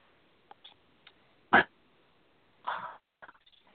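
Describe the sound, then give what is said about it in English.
A person coughs after taking a shot of 1800 tequila, one short sharp cough followed a second later by a longer, rougher cough, with faint clicks and small throat noises around them and no talking. “I do that every time, like, make you cough.”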